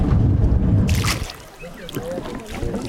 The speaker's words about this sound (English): We're in the boat on the bird sanctuary